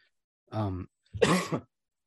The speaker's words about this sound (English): apologies again, guys, for the coughing. Like, I've had this cough that's been hanging around for 2 weeks and it's just acting up tonight.